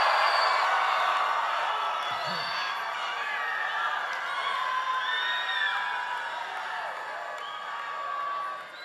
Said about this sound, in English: We are happy with shouting and screaming. If you are not happy, you can go to another church.